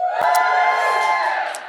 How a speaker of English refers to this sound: Give us a quick cheer if you have literally no earthly idea who I am and you're just here for Ricky Gervais.